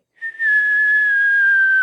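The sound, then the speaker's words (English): A single long, steady whistle that slowly slides downward in pitch for nearly two seconds, like the falling whine of an incoming artillery shell. It is loud and clear, with no talking. “Well, hey, look, this thing is just like a incoming round. Well, when it starts the descent, you know, the pigeons are on the roof, you know, about 25 of them.”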